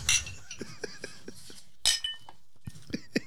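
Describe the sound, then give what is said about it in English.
Glasses clink together in a toast, several bright ringing taps spread across a few seconds, with a few softer knocks and faint background murmur between them. “Always remember to drink responsibly. Cheers, everybody.”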